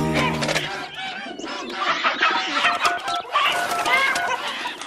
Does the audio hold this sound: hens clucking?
yes